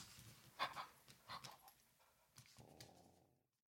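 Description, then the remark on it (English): A small dog pants in quick, breathy bursts, with a couple of brief whiny squeaks mixed in, before fading into quiet. No one speaks. “He's a wonderful little dog.”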